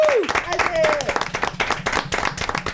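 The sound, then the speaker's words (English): A steady round of applause for a drone videographer, dense overlapping claps running the whole length, with a high whooping cheer sliding downward near the start. “Yeah, maybe anyway, let's all give him a round of applause.”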